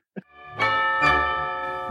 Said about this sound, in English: Who rang that bell?